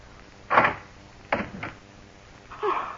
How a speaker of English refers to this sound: Darling, please unlock this door. Please.